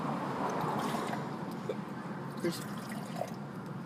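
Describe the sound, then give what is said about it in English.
Water pours steadily into a glass, a continuous splashing trickle broken by a few brief drips, with faint voices murmuring underneath. “Well, now you've got some water.”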